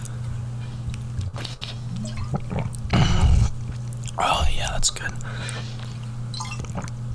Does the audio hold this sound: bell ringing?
no